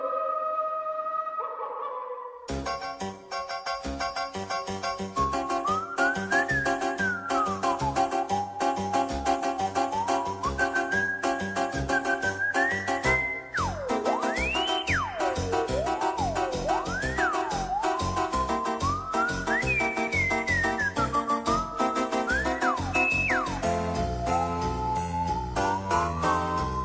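A loud, continuous spooky horror theme starts after a brief quiet moment, with an eerie whistled melody gliding and swooping up and down above a dense, steady accompaniment. No one speaks.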